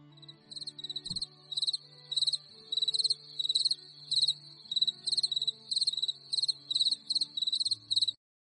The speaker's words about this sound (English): those crickets chirping where Tracy's voice would normally chime in